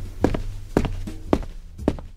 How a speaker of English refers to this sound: Sometimes, like when it's something simple, like footsteps walking down the street.